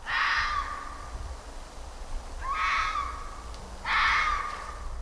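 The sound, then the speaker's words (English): Three loud, raspy fox cries ring out with short pauses between them, each a strained, high-pitched scream lasting about a second, over a low background rumble. “Have you ever thought a fox cry sounded like a woman's scream?”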